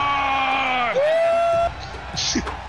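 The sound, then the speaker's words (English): A single voice imitates an entire crowd roaring and cheering in an arena with a loud sustained whoop that slides downward and then trails off into rough, breathy noise, lasting under three seconds. “And the entire crowd roars.”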